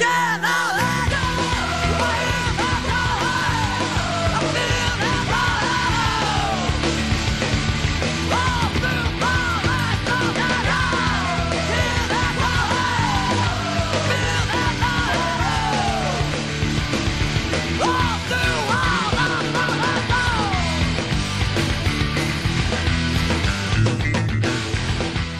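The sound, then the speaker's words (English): A loud, dense rock track with distorted guitars and pounding drums, topped by a raw, screamed male vocal that stays harsh and unintelligible throughout. “I don't know what he's saying in any of that. He's just kind of screaming.”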